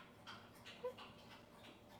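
A dog pants in quick, steady breaths, with a brief thin whimper partway through. The sound is faint, with no talking.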